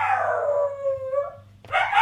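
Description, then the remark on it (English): A dog lets out a long, wavering howl that slides downward in pitch, then starts another rising howl after a brief pause. Loud, from about 20 feet away with a door half shut, with a low steady hum underneath. “This dog makes noises that I don't think any other creature on earth makes.”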